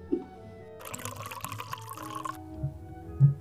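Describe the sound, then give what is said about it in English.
Single malt whisky is poured neat into a glass in one steady, splashing stream lasting about a second and a half, with soft dull knocks of the glass before and after. “Single malt, if you have it. Neat. Coming right up.”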